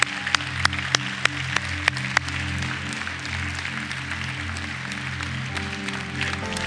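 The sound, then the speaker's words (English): A church audience applauds steadily over sustained organ-like music, cheering on people coming down to the altar, with a few sharp claps standing out near the start before the clapping blends into a continuous wash. “Now we're going to ask all y'all who are standing to come down to the altar while the rest of us cheer for them and encourage them to step out of your seat and come on down to the altar. Let's give them a hand.”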